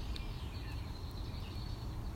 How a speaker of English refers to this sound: So many bird noises.